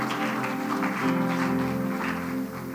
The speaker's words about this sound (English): Give the Lord a clap offering in the house.